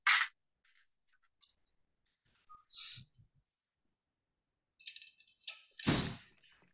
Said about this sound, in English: I need to get off my bed and close the door for a minute, so hold on, onto your toes.